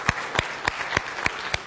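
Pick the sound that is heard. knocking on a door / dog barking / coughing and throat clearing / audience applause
audience applause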